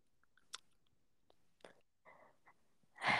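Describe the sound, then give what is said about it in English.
Heavy breathing: a few short noisy puffs with small mouth clicks in between, ending in a louder rushing exhale. No one speaks. “It's just you, like, breathing really loud.”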